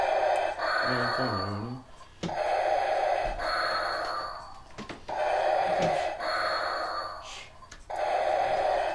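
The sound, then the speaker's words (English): A voice imitates Darth Vader's heavy, mechanical masked breathing: long, loud rasping inhales and exhales repeating in a slow, steady rhythm, with brief pauses between breaths. “Darth Vader just does the Darth Vader thing. Do Darth Vader.”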